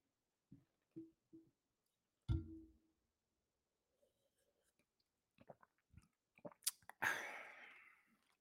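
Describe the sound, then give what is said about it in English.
Someone sips coffee: a few soft taps and a dull mug thump, scattered small mouth clicks, then a loud, airy slurp near the end. No one speaks. “I'm going to sip some coffee first so you guys can get a fresh take on what's about to happen.”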